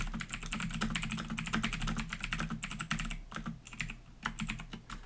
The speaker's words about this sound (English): Yeah, you hear me type. It's because I got a mechanical keyboard and I love how it goes clack, clack, clack, clack, clack.